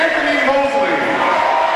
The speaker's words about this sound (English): So Soddy being introduced right now. You hear the crowd in the background.